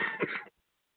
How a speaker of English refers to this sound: I'm sniffing and coughing, but sorry about that, man. Sorry about that, guys.